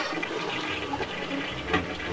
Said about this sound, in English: After all, it was the first major U.S. film to feature a toilet flush.